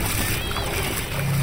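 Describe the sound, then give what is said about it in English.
A paddle is swatted erratically in the water, slapping and churning in a steady, busy wash of splashing, fairly loud, with muffled voices mixed in underneath. “started swatting his paddle in the water erratically.”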